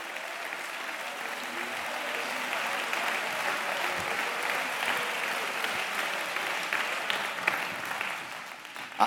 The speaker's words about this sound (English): I want you to clap your hands and give God praise in this building.